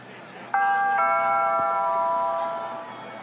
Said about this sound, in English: Do I just let myself in? No. That would be rude. I'll just ring the doorbell.